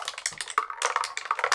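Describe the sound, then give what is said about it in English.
A rapid, dense clatter of dice tumbling through a dice tower and knocking against each other, fairly loud, with a sharp knock partway through and no voices; the dice are rolled for initiative in a tabletop game. “This dice tower is amazing.”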